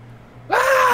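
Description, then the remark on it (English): Someone imitates a scream from a bridge, caused by a thaumaturgy spell and meant as a Wilhelm scream: a sudden, loud, cartoonish yell that bursts in halfway through, swooping upward in pitch and then holding steady until the end, with no other talk. “I'm going to cause a thaumaturgy again, and a scream from the bridge”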